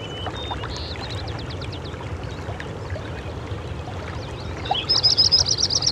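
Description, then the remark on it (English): A Lincoln's sparrow sings in a wet meadow in the morning, a bubbly, jumbled song of quick high notes, building to a louder buzzy trill at the end, set against a steady rushing wash of water-like background noise. “Here's another bird that is really common in wet meadows like this. It's a Lincoln sparrow.”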